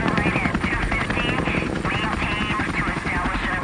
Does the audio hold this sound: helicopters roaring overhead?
yes